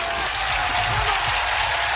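A crowd applauds steadily, a dense wash of many hands clapping at once with no individual claps standing out, holding at an even, fairly loud level throughout.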